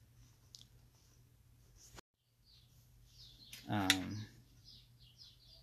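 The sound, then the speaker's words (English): Birds chirp repeatedly in the background, short high twittering calls scattered throughout, fairly faint, with one louder, sharper burst of sound near the end. “Man, those birds are going off, huh?”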